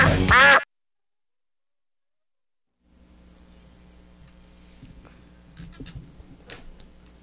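A single loud, nasal duck quack bursts out at the start, then silence, followed by a low steady hum with faint scattered ticks and clicks.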